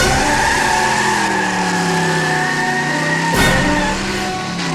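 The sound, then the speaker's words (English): The car of the President's Secretary of Defense, Billy D. Wilcox, roars away with its tyres squealing loudly, the engine note rising steadily as it accelerates, with a sharp burst of noise partway through. No voices. “He's getting in his car. Do we follow?”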